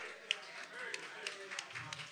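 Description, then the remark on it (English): Light, scattered applause from a small group for Team 10 at a quiz, the only team to get the answer right: a handful of quiet, uneven claps over about two seconds, with faint murmuring voices underneath. “Round of applause, Team 10.”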